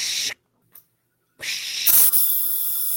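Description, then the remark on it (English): A steady airy hiss of supplemental oxygen flowing, cutting out briefly, then surging back with a louder rushing burst before settling into a continuous high hiss, without talk. “That's my supplemental O2.”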